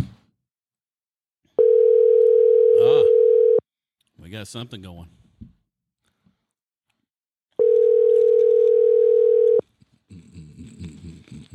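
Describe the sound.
Two long, steady phone ringback tones, each about two seconds, sound loud and clear with a pause between them. A voice speaks briefly between the rings, and talking picks up after the second tone.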